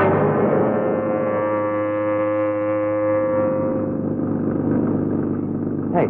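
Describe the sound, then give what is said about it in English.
An old taxi's car engine runs loudly and steadily, a rough droning hum with a strong tonal whine that shifts slightly partway through. No one speaks. “Hey, you think this old heap is going to make it to where we're going?”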